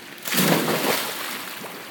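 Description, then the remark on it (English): A person hops into water after a run, with a burst of sloshing and splashing that swells quickly, then settles into softer lapping and churning water, with no talking. “All right, I'm about to hop in.”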